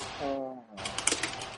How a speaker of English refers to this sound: Hold on, I hear. We can hear you typing